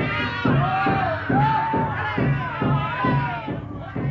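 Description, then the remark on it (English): A crowd of hundreds of attackers in the trees shouts and whoops in a steady, rhythmic chant, loud bursts pulsing about twice a second with wavering high cries rising above the din. “Amid the shouts of the savages, Mr. Grange speaks.”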